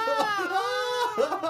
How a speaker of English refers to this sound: And the nominee for best scream goes to...